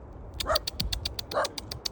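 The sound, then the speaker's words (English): A small dog gives two sharp, high-pitched yaps about a second apart, over a faint rhythmic ticking and low outdoor rumble. “She gets so worried with little dogs.”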